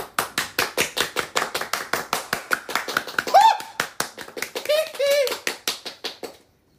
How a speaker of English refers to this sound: Yeah, let's applaud her, gentlemen.